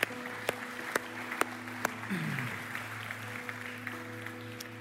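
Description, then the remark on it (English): An audience applauds its fathers and father figures during a morning church service, with steady clapping and a few sharper, louder claps standing out over a continuous low hum, the applause staying fairly even throughout. “And why don't we encourage our dads once more again right now by giving them a huge round of applause this morning.”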